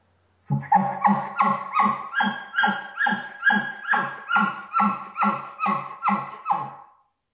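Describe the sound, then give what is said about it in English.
A game call blown on a latex reed, with its two parts played together, gives about thirteen evenly spaced, bark-like yelping notes in a steady rhythm, each note rough and harmonic, loud and alone with no talking. “So when you put it together, I know it's a little hard just over the phone to kind of demonstrate this technique, but this is what it sounds like when you put the two parts together.”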